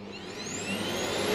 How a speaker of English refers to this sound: Okay, so how do you deal with them? I get the vacuum cleaner.